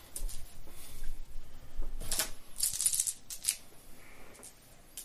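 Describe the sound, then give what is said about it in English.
Dice rolled for an awareness check in a tabletop role-playing game: a short burst of dice clattering and tumbling across a hard tabletop, a quick run of sharp rattling clicks, then a few scattered taps before it settles into quiet. “Well, he gets to double his dice.”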